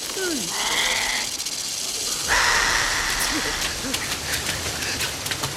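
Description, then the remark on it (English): A wet spitting sound from an animatronic creature gives way to a steady, crackling sizzle of the spit frying on a man's face, growing louder partway through and hissing continuously to the end, with faint vocal sounds underneath. “You have to sell that animatronic, you know, and that spit sound, and even the sizzle, you could hear it kind of frying on his face.”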